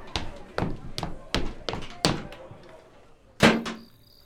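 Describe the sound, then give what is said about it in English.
A back door bursts open with a loud wooden bang, preceded by a rapid series of sharp thuds and knocks, then a brief ringing fade. “Gerda, the back door!”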